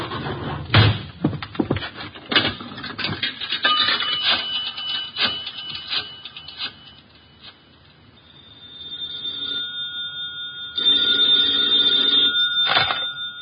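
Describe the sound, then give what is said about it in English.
A few sharp knocks and clatters, then a telephone bell rings in steady, high-pitched bursts, continuing loudly to the end with no one talking. “I felt the time was exactly right for you to call.”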